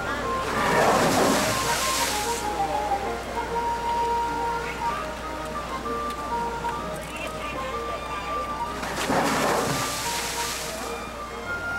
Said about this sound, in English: walk up to this thing and suddenly have the water come spraying out of it as if a wave hit it